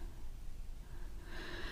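Heavy, slow breathing close by, a soft rasping inhale and exhale with a faint snort-like rush, quiet and steady with no talking.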